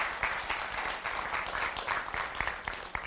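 A crowd applauds a departing member during a sermon, many hands clapping at once in a dense, even patter that stays fairly loud for the whole stretch, with no voices rising above it.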